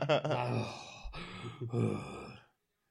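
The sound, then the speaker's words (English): A voice imitates a wrestler's heavy, ragged breathing after a match, like a chain smoker, with wheezy, groaning exhalations, three or four strained breaths before falling silent. “Melina breathing like a chain smoker.”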